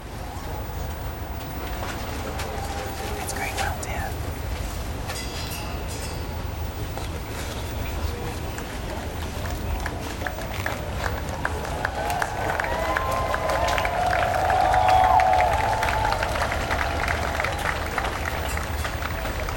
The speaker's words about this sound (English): I can just see the state hearse coming into view here. We're going to pause clearly as a mark of respect as the state hearse carrying the body of Queen Elizabeth II pulls down towards Buckingham Palace, and you can listen to the crowds.